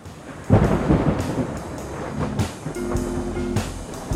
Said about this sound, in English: The wind did change. As evening approached, so did a wild, unpredictable summer storm.